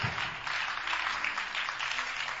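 Sustained crowd applause for people as they arrive, a dense, steady wash of many hands clapping together for the whole stretch with no pauses, moderately loud and no voices standing out.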